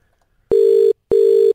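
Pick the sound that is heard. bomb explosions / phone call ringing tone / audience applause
phone call ringing tone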